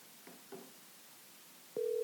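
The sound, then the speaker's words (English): A couple of faint, brief blips on a quiet line as a phone call is placed, then a steady telephone ringing tone begins near the end and holds, clear and continuous, with no one talking. “We're going to get him on the phone.”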